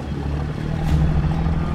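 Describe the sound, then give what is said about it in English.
A boat's motor drones steadily as the boat leaves, a low rumbling engine hum with a faint tonal whine, holding at a fairly even level throughout with no voices. “The boat stays near him for half an hour, just watching.”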